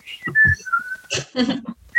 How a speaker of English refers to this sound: And I'm whistling.